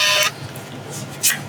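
A Polaroid instant camera ejecting a photo as a selfie is taken: a short, loud mechanical whirring buzz at the start, then quieter rustling and a brief sharp burst of noise near the end.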